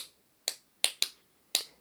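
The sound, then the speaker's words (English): Five crisp hand claps ring out alone in an uneven rhythmic pattern, two of them close together in quick succession, clapping along to the words of a song to tap out its rhythm, without any music or voices. “We can work out the rhythm by clapping along to the words of the song like this. Let's clap to the rhythm.”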